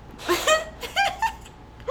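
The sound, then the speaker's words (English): A stifled, held-in sneeze breaks out as a few short, squeaky bursts with a brief pause between them, fairly soft and with no talking over it. “I hate holding in my sneezes.”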